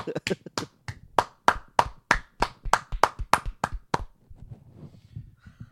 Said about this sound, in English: Whenever we give ourselves a round of applause on this show, it's just so sad.